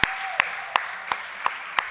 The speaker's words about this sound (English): One more. Can we have one more round of applause?